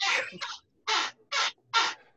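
A chair squeaks loudly several times, a longer creak followed by three evenly spaced, high-pitched squeals with short silent gaps between them.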